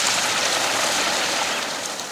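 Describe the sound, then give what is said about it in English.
A dense, unbroken wash of bird noise, like a huge starling flock: countless overlapping chirps and whistles merge into a steady, loud hiss, with no clear individual calls and no speech. “Do you think all this noise should be called a murmuration of starlings?”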